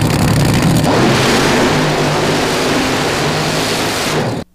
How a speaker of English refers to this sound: Helicopter to racetrack.